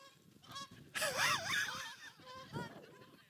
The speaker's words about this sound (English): We're being abandoned by the geese now. What a shame.